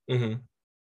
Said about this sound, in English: Bless you.